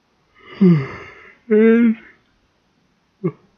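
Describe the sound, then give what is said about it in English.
A person yawns, a breathy drawn-in start rising into a loud, voiced, groaning stretch, followed after a pause by a short vocal sound. “And the yawning.”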